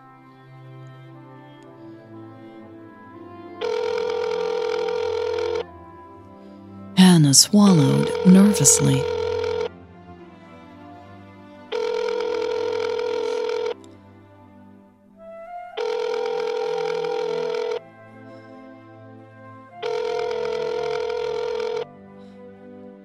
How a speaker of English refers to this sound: Then, Hannah hit the green call button under Millie's name. Here we go. The screen changed to calling Millie, and she lifted the phone to her ear.